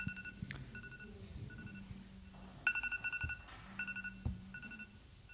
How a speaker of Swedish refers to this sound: Hur får man stopp på timern?